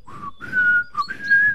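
A person whistles a short tune, a few clear notes gliding upward in pitch with brief pauses between phrases, over a faint low background rumble.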